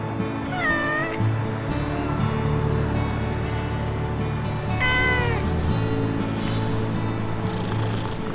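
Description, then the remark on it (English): A hungry kitten meows insistently, with two clear high-pitched cries near the start and middle, over a steady low hum and faint background rumble; no talking. “Look, it seems like the kitten is dying of hunger.”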